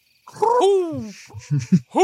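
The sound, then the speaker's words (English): Two people hoot like owls, loud, a drawn-out wavering "hoo" followed by a few short, bouncy hoots in quick succession. “But you've got two big owls with you now. Well. Yes, what do you two have to say for yourselves?”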